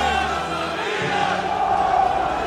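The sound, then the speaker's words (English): A dense crowd of AC Milan soccer fans roars and cheers continuously outdoors after a victory, as tens of thousands pour out of the stadium into the streets. Many voices blend into a loud, sustained wash of chanting and shouting with no pauses. “Tens of thousands of fans pour out of the stadium and into the streets.”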